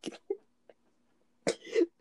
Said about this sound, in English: I was coughing and then I started laughing for some reason.